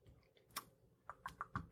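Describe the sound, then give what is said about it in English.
Clacky keystrokes on a loud computer keyboard: a single tap, a short pause, then a quick run of about five sharp clicks in an uneven typing rhythm, moderately quiet, with no talking. “Sorry about the typing. I have a loud keyboard.”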